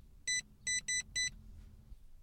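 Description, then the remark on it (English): Four short, bright electronic keypad beeps in quick succession, clear, with a slightly uneven rhythm over a soft low hum inside an all-electric car, as someone punches in the car's secret code before starting it. “First, I'm going to punch in the secret code.”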